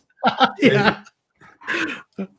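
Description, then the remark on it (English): A fox calls out in a series of harsh, strained yelps and barks, four or five bursts in quick succession with brief gaps, fairly loud. “Yeah, yeah, that's a fox.”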